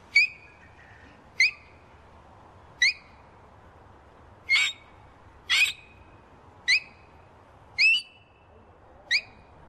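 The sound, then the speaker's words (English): A child's voice imitates a king parrot call: eight sharp, high squawking whistles spaced roughly a second apart, loud, over a quiet background with no talking. “I'm going to do a king parrot.”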